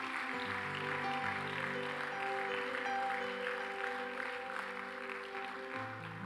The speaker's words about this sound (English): Come on, let's give all those wonderful people a big hand clap.